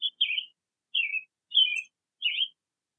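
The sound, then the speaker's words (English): A bird, Cuckoo Achoo, sings as she flies, chirping in a short series of four or five bright, warbling notes, evenly spaced with brief pauses between them, clear against silence. “So Cuckoo Achoo sang her song, merrily as she flew along, singing the tunes that she had made.”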